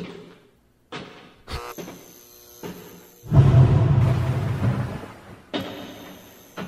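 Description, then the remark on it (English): Heavy footsteps thud down a staircase in uneven steps as a man walks downstairs and out of the house, then a loud, sustained clatter as things left on the stairs are knocked down and tumble, followed by a final thump. No talking. “This is them walking downstairs and out of the house.”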